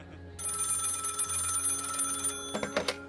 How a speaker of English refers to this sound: But there was one other facility whose phone rang off the hook that night. The first communication came in at 8:16 p.m.